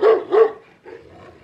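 A dog barks twice in quick succession, loud, followed by a softer, trailing yelp or whine as the sound fades out.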